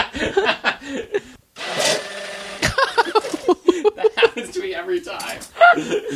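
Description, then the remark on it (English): A blender whirs in a short, loud burst of about a second while a milkshake is being made, set between stretches of people talking and laughing. “See, this wouldn't happen in a real blender.”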